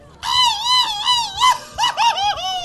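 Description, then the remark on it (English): A loud cartoon cat's pained scream, like the sound Tom the cat made when burned by Jerry the Mouse: one long, wavering, high yowl followed by a few shorter broken wails, with no talking. “Do you ever notice that that's what the sound that Tom the cat made whenever he got, like, you know, burned by Jerry the Mouse?”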